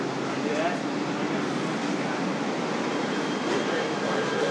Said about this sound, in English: People getting on the train, people getting off the train.